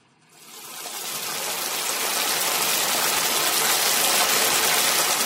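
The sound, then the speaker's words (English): A steady sizzle of bacon frying in a pan, fading in over the first half second and then holding a dense, crackling hiss that sounds much like heavy rain, with no voices. “That was bacon. Bacon frying in a pan.”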